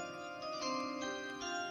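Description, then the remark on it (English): A brief chime sound effect: bright, ringing tones that shift through a few notes and sustain for nearly two seconds at a steady, moderate level, with no voices over it. “Should I give myself a chime?”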